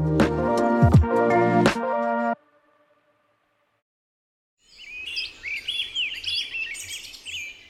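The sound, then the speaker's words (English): A short burst of music ends, followed by a moment of silence, then several birds sing and chirp in busy, overlapping trills against a faint outdoor hush. “To human ears, birdsongs are beautiful background noise.”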